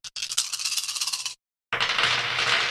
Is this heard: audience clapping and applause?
no